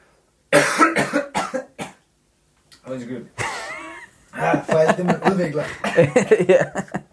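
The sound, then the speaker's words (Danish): A loud coughing fit from something stuck in the throat: several harsh coughs in quick succession, then strained throat-clearing and choked, rasping breaths, followed by a voice talking. “Det var fast i halsen.”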